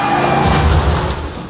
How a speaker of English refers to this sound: You have crashed.